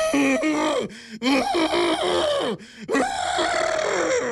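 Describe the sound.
A person on the 98.5 Virgin Radio morning show imitates an angry moose with loud, strained, drawn-out bellowing groans, several sustained calls with rough harmonic tones, separated by brief gasping pauses.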